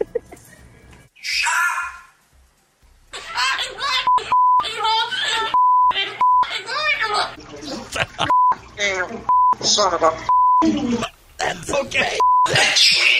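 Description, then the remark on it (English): A pet parrot named Archimedes, in recorded audio sent in by its owner, chatters and swears in shrill, scratchy speech-like bursts, repeatedly cut by short, steady-pitched censor bleeps, with a brief breathy noise at the start. “But we wanted to hear the parrot swearing, so.”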